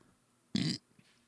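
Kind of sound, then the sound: human body sound, burp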